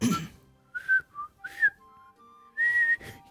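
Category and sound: human body sound, whistling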